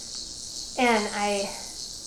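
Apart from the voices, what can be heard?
cicadas chirping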